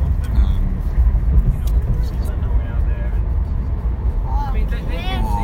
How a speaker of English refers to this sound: What is that? That's a car. It is a car.